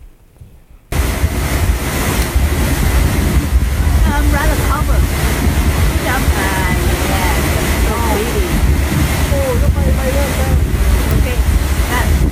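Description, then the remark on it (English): A waterfall's loud, steady rushing roar, heard while approaching it on a cloudy evening as it grew darker, starts abruptly after a brief moment of quiet and continues unbroken, with faint voices just audible beneath the roar. “And we can hear the rushing water falling louder and louder as we approach the fall.”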